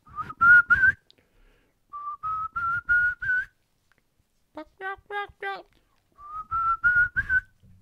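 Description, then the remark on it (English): A person whistles an imitation of a wild turkey's springtime kee-kee call: three runs of short, high, rising whistled notes, four or five per run, with a brief burst of harsher, yelping notes between them. “In the springtime, you're going to hear a kiki that's going to be like this.”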